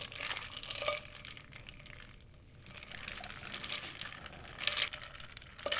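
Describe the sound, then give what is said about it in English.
Water sloshes and splashes in a bowl of ice water as a hand pumps its fist up and down in it, a steady churning with a few sharper splashes and no one speaking. “Fill a bowl with water and ice, place your hand inside, and pump your fist.”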